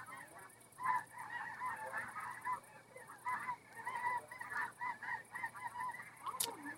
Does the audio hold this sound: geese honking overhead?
yes